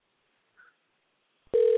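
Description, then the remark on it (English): Near-silence with a faint short blip, then a loud, steady electronic phone tone cuts in abruptly at the end as an outgoing phone call to a man starts ringing. No one speaks. “What, he's probably going to get mad at us for calling him.”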